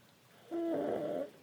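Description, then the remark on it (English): A baby boy gives a single soft snore, a brief nasal rumbling breath lasting under a second, against a quiet background with no talking. “You can hear my son snoring, and it's absolutely adorable.”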